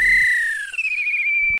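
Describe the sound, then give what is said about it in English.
A referee's whistle sounds one long, loud blast lasting about a second and a half, its tone wavering slightly with a brief trill midway before cutting off sharply. No voices accompany it. “If this were a real bit of extra time, this is when the ref will blow the whistle because it's finished.”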